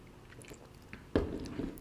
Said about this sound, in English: I'm going to take one more sip.